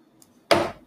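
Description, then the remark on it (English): A wooden table gives a single sharp creak that starts abruptly and trails off within a fraction of a second, with a faint squeaky tone in it. No one speaks. “Oh, sorry, our table. It's been super squeaky today.”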